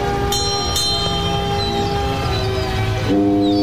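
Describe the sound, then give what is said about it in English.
A huge foghorn blast, added by a sound editor at the beginning of a song, drones loudly and steadily for several seconds, its deep layered tones shifting slightly near the end, with a few faint bright clinks over it and no talking. “I'm not sure why the sound editor decided to whack in a huge foghorn at the beginning”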